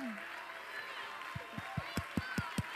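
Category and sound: crowd, audience clapping hands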